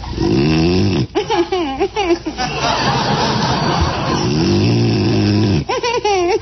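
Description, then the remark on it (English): A man snores loudly and raggedly in his sleep, drawn-out rasping breaths with wavering, harmonic-rich tones in between, continuous over a few seconds. “you said you wouldn't snore.”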